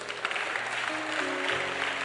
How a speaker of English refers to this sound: But wait, why are you clapping?